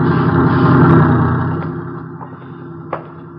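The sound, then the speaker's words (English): A heavy truck rumbles loudly past on a movie studio lot, its engine noise broad and steady before gradually fading as it moves away, with a couple of faint clicks near the end. “Watch the truck,”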